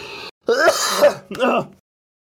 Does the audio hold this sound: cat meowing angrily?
no